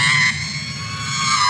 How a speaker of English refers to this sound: Now that is of course the unmistakable scream of R2-D2. Is it from Star Wars, Revenge of the Sith, Phantom Menace, or Attack of the Clones?